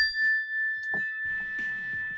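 A mindfulness bell rings as a cue to take a deep breath, with a single clear, sustained tone that hangs steadily throughout, while faint rustling and soft clatter sound underneath.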